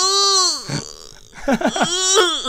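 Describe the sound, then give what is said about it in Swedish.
A person imitates a moose mating call: a loud, drawn-out nasal bellow that sags in pitch, a pause, then a few short guttural grunts rolling into a second strained, wavering bellow. “Och det är ungefär så älgar låter.”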